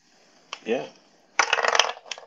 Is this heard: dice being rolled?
yes